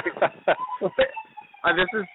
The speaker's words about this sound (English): Oh, now we got an ambulance driving by. Welcome to New York.